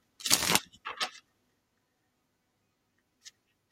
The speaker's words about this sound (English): So I'm just going to shuffle up the cards.